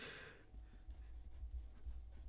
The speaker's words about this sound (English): I'm writing in pen. I have way more confidence in my abilities than I should.